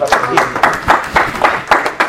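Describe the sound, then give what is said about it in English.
A crowd claps hands together as praise to God in a steady, quick rhythm, the sharp claps landing roughly four times a second over a murmur, loud. “Somebody ought to give God a hand clap of praise.”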